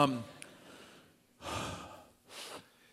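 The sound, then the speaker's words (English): Two strained, breathy airflow sounds of breathing through a straw follow a brief low vocal onset, each a short hissing draw of air through the narrow opening, with quiet gaps between them. “I feel like sometimes when we walk through life, we walk through like we're breathing out of a straw.”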